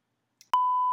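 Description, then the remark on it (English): A loud, steady censor bleep cuts in abruptly right after a brief clipped fragment of voice, holding one unbroken electronic tone until the end. “Well, I was trying to avoid it, so I didn't have to beep it out.”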